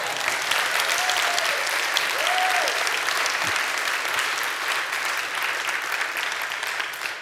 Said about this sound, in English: Great job, you guys. I know you want to clap for them. Well, go ahead.